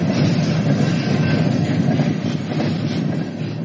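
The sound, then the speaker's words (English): A cargo train rumbles steadily along the tracks, its wheels clattering in a dense, continuous roar that stays loud throughout, with no voices. “Moscow, everything points to it, as does this train.”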